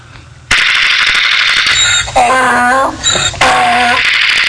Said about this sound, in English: Louder on the gunfire.